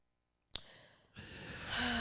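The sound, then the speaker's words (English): After a brief click, a person draws a long, breathy yawn, the airy sound swelling louder and ending with a low voiced groan. No one speaks. “Can you not yawn?”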